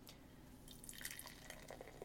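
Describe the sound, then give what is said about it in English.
A beer of 8% alcohol by volume splashes into a glass in a short pour, a soft fizzing trickle dotted with bright little drips and glassy clinks, fairly quiet and with no one talking. “And the pour. I'll just do a little bit for you.”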